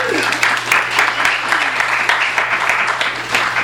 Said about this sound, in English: Round of applause